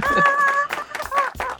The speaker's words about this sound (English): That's your clap track. Yeah, I'll just slap some claps.